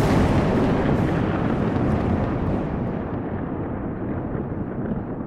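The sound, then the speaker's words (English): A loud, thunder-like crack as someone steps out of sight, rolling on as a deep, rumbling roar that fills the whole stretch and slowly fades as its brightness dies away. No voices. “She steps beyond their vision with a crack. Like thunder.”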